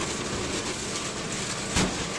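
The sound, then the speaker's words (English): An SSI industrial shredder grinds through a bug car with a steady, dense mechanical roar, broken by one short, louder crunch near the end. No one speaks. “What better place to put your bug than inside an industrial paper shredder?”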